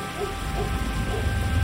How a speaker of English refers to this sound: And for the briefest of moments, I even forgot about the storm, although I was still being pelted with rain.